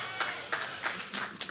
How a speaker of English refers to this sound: Guys, I understand from that pitiful applause that some of you might have trouble with the thought of yielding to our new president.